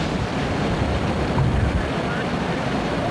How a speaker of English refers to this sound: This is, yeah, there's like a bubbling water comes out of the ground. I don't know if it's really hot, it's steaming, but is it smoke or steam? I think it's steam, looks like.